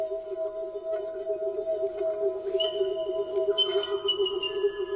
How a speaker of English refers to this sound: It's the resonance. The thing about the calls of South Island kakako, unlike any other bird call I've heard in the world, is they seem to be able to produce a natural resonance.